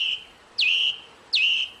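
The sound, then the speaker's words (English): A thrush sings clear, fluting whistled phrases, each swooping down into a sustained bright note, repeated about every three-quarters of a second, with no voices. “It's a thrush. Isn't that beautiful?”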